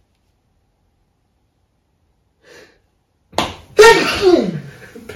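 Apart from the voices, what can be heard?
sneeze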